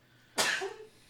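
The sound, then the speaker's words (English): A single sneeze bursts out suddenly, a sharp hissing blast that trails off over about half a second, with no talking around it. “Bless you, sir.”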